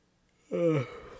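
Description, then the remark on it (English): A single short yawn from one person: a sudden voiced groan that slides downward in pitch, then trails off into a soft breathy exhale, with no talking around it. “Sorry, I had a yawn.”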